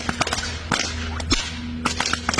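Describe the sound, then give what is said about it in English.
A rapid series of sharp, snapping whip cracks, five or six in a quick rhythmic routine: a four corner with a whip in one hand and a ball in the other, going into a double breakaway, loud over a low steady background hum. “And then sometimes you find little combos, like that was just doing like a four corner in one hand and a ball in the other, then going into the double breakaway.”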